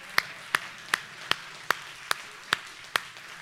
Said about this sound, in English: I'll just clap.